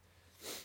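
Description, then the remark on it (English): A single short sneeze, faint, a quick breathy burst in the middle of an otherwise quiet moment with no talking. “God bless you.”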